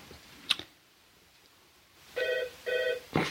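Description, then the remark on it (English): A telephone rings electronically in two short, steady bursts, clear, with a click before and after the rings and no talking. “I'll let you make one phone call. I don't think I hung up.”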